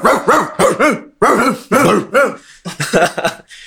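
A dog barks loudly in a rapid run of about ten sharp barks, with only brief gaps between them and no one talking.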